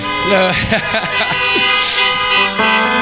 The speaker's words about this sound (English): And I'm assuming that the honking of the horn is going to be what would normally be an amen, Pastor.